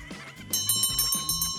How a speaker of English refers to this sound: Oh! Ladies and gentlemen, there is the closing bell.